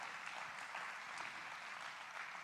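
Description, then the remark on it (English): A crowd claps steadily in praise to the Lord, a dense, even wash of many hands with scattered sharper claps standing out, sustained throughout with no pauses or talking. “Somebody clap your hands to the Lord and give him praise right now.”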